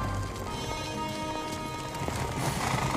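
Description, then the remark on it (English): Rapid hoofbeats of horses galloping in a film clip pound steadily beneath a dense, sustained musical score, the clatter continuous and fairly loud throughout. “Run the horses.”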